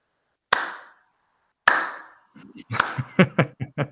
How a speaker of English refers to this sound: Some hand claps. It's clap your hands, everybody.